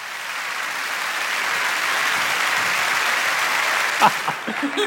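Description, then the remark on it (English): A church audience claps during a sermon in a dense, steady wash of applause that holds fairly even throughout, thinning slightly near the end as a voice begins to speak over it. “I'll never force the clapping.”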